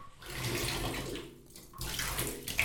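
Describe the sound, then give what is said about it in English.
Bubble bath is poured into a filling bathtub, a steady rush of splashing water with a brief lull midway before the churning picks back up. No one speaks. “All right, now pouring in some bubble bath.”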